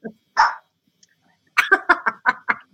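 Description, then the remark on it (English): A female dog barks, first two separate woofs, then a quick run of about six sharp, loud barks in rapid rhythm, with no talking over them. “I honestly don't know what she's barking at is the worst part.”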